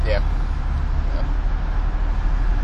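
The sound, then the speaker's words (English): A steady, heavy roar of highway traffic heard from a bridge over the highway in Columbus, a continuous low rumble with no breaks, with a faint brief voice-like sound right at the start. “Hey, we're currently on a bridge that goes over a highway.”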